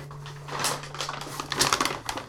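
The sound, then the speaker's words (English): Crisp, irregular crinkling and rustling of a Goodwill paper bag being handled, with quick bursts of crackle over about two seconds and no talking. “I have another bag here, a paper bag. It is a Goodwill bag.”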